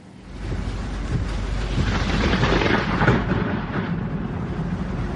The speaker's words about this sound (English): Holy crap. Ida still packing a punch, unleashing this tornado near Annapolis, Maryland. We moved away from the windows because all kinds of debris was crashing into the window.